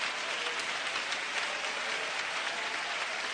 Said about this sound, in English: Somebody clap your hands with me and praise him.